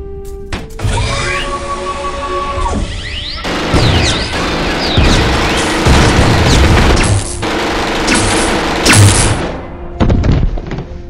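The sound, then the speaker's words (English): Heavy, irregular pounding on a door as the Borg try to break it down, loud thuds and booming crashes landing again and again over a dense, rumbling background with a steady tone early on; nobody speaks. “The Borg are trying to break down the door.”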